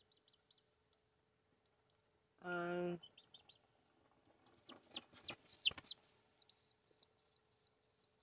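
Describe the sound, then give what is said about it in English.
A chicken lets out one loud, harsh cluck, surrounded by quick, high chirping peeps that repeat steadily throughout and grow busier toward the end. “Hi, yo, Chicky. Just chill.”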